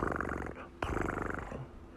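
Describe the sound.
A voice imitates sleepy snoring with drawn-out, rumbling, rhythmic snores, fairly loud, with a brief sharp catch midway before the snoring resumes and trails off.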